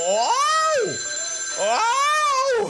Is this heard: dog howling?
no